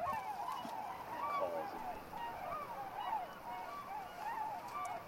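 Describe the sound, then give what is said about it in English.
A chorus of tundra swans calling steadily, many overlapping high, hooting and honking notes forming a continuous, moderately loud clamor with no single voice standing out. “I hear tundra swans.”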